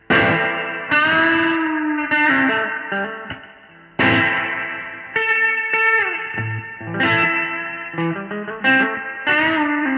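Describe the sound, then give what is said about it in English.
Electric guitar on the bridge pickup playing bright, strummed chords and short riffs through a Boing reverb pedal cranked all the way up, notes ringing out with a washy tail between phrases, loud with no talking. “Now, with it, I like it, but you have to have it cranked all the way up to even getting kind of reverb signal from it.”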